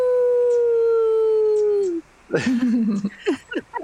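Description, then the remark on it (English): A person imitates a wolf howl, holding one long steady tone that drops off after about two seconds, followed by several short, choppy yipping calls, fairly loud. “And I close my eyes and try to, like, reconnect with that part of myself to make, like, a wolf howl for him.”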